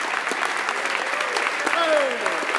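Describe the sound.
A crowd at the ATO Congress National Convention in Orlando, Florida applauds a guest who shared stories, dense clapping filling the whole stretch at a fairly loud, even level, with a few voices calling out and sliding whoops rising above the claps.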